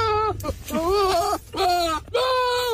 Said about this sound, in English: a lot of people didn't realise it is actually a goat